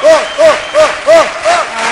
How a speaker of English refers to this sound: Can I hear my audience applaud for Thor?